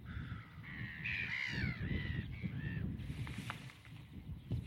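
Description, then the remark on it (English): Godwits, a kind of wader, calling while feeding before migrating to the Arctic: a run of harsh, nasal, slightly squeaky calls repeated several times over a steady low rumble of wind or background noise. “They've got an unusual call.”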